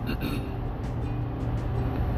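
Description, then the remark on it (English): A steady, dense rumble of heavy road traffic with low engine drone and tire noise, continuous throughout, with no clear breaks between vehicles and no one talking. “Sorry, getting a little heavy traffic here.”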